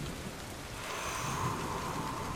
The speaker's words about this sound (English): he's confronted with the biggest storm this island has seen in a long, long time.